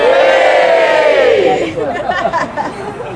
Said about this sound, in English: And now nice big cheer. Three, two, one.